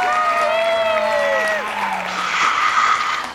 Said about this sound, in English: Also the crowd going wild for me as well.